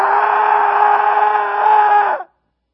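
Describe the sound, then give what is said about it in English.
A loud, sustained shriek from a human voice, held at a steady, strained pitch for about two seconds before cutting off abruptly, performed as a demonic howl. “And they got into the synagogue, and no sooner had they entered than a man with an evil spirit began to shriek like a howling demon.”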